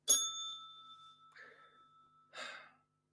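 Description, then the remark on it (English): A single bright bell ding strikes sharply and rings out, slowly fading over a couple of seconds, while two soft breathy bursts like a gasp and a sigh follow. “Where's the positivity bell?”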